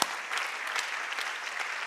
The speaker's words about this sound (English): This is strength. You can clap for that.